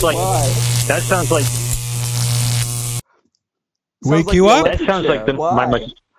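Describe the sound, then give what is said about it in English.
A loud electric buzz and crackling sizzle from a mosquito zapper frying a mosquito runs for about three seconds under someone talking, then cuts off abruptly; after a brief silence, voices continue talking. “My mosquito zapper frying the mosquito there.”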